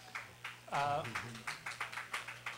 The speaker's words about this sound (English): We can take that applause for you.